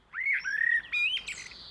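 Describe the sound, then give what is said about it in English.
A blackbird sings a short run of clear, fluting whistled phrases, fairly loud, with a few brighter twittering notes at the end and no voices. “Birdsong, the blackbird, is quite distinctive”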